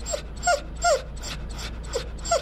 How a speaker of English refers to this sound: Just down the hall, an English setter named Missy cries and pants as she lies in a concrete enclosure on a blanket. Her neck is wrapped with pink bandages, and her shaved body is bound by a metal brace.